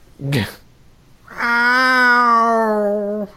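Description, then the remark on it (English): A person voices a short yelp, then a long, drawn-out whine with a steady pitch that mimics a cat's pained yowl, loud, with no other talking, acting out lying on the ground whining in pain after a bad fall. “I sound like a cat.”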